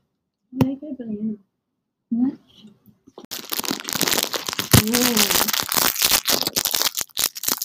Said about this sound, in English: Wow, this pizza is really crunchy.